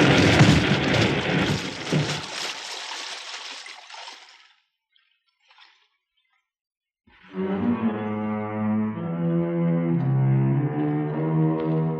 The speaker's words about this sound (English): well, the shock of crashing into us must have wedged him into his boat.